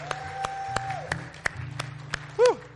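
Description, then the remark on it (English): An audience at a morning service claps in scattered, uneven bursts over sustained keyboard tones, with a short, loud cheering shout rising near the end. “Come on, give him a shout this morning.”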